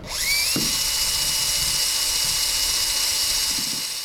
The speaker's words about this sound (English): Since 2013, the Forest Service has been collecting water samples on Luna Lake. Some samples are just straight surface water. Others are sent through a filter rigged with a cordless drill. So now I'll hook up the filter.